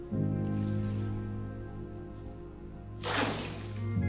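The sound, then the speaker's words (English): A steady low droning hum fills the background, then near the end a sudden rushing splash of water bursts in as a cup of water is poured down a well over 100 feet deep. “I want you to dip a cup of this water and pour it down the well.”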